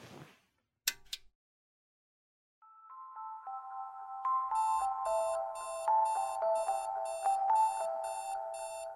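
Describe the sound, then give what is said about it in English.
A couple of quick clicks, then an electronic alarm clock goes off at 7:30 a.m., its rising beeping tones building into a loud, steady melodic ring with rapid repeating pulses that continue without stopping. “The alarm goes off at 7:30 a.m.”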